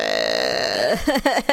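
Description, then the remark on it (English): A person imitates a big dog's burp with a long, low, rumbling belch that lasts nearly a second, followed by a few short voiced bursts, fairly loud. “I've never seen a dog burp.”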